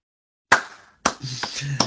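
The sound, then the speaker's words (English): A few sharp hand claps, roughly four loud, crisp smacks spaced unevenly over a couple of seconds, each with a short ringing tail and a faint low hum between the later ones. “I'll have to applaud you for that one.”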